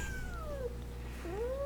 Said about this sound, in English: She has the most adorable meow. Meow.